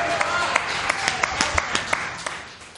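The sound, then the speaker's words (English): The audience at a fan appreciation party applauds steadily for themselves, with sharp, evenly spaced claps standing out over a dense wash of clapping and murmuring voices, sustained throughout at moderate volume. “So give yourselves another round of applause for showing up tonight.”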